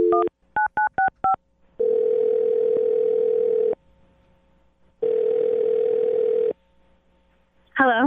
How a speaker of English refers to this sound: Okay, I'm going to dial her phone number right now and get her on the phone and find out if that is the problem.